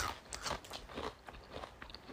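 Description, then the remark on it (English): Close, crisp crunching as a snack is chewed, a steady run of brittle cracks and bites repeating several times over a couple of seconds, with no talking. “Yeah, it tastes good.”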